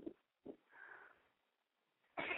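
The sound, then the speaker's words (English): A sneeze: a couple of short, soft sniffs and a hissing intake of breath, then a sudden loud, harsh burst of air as the sneeze breaks out at the end. “Sorry. Bless you.”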